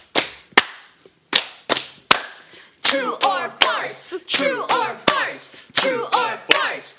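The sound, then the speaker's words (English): A short theme jingle for the segment "True or Farce" opens with sharp, evenly spaced clap-like hits, then swells into a loud, busy melodic passage with sweeping tones as the percussive snaps keep the beat. “Can we hear that theme again?”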